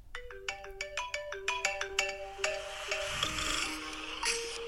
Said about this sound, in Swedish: Första ringsignalen.